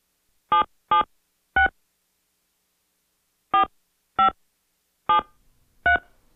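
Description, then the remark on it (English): Seven short, steady telephone keypad tones, each a brief dual-pitched DTMF beep, dialed in two uneven bursts of three and four with a pause between while dialing a phone number to make a call, clear and alone with no talking. “Yo, that sound like the you know that the tones actually say what the numbers what the numbers are.”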